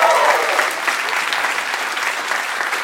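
A crowd claps steadily at a live recording in London, a dense wash of many hands with no pauses, loud and sustained for a few seconds, with faint cheering mixed in and no one speaking.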